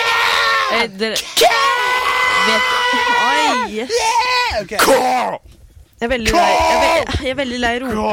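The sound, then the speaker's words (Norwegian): A man shouts loudly in long, strained bursts, his voice rising and wavering, with a brief pause before another drawn-out yell. “Jeg er veldig lei roping.”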